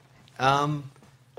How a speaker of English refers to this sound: I have my cell phone up. Let's see if Dierks answers here.